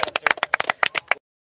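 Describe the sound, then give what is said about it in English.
A quick patter of applause, a rapid uneven flurry of claps lasting about a second before stopping abruptly. Crisp, moderately loud hand claps with no voices. “Applause. Yeah, just an applause.”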